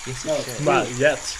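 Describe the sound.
Steady running water hisses quietly in the background while a voice vocalizes over it in the foreground, the wash of water continuous beneath.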